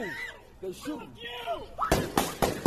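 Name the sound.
gunfire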